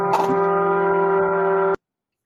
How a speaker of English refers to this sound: just passed a train horn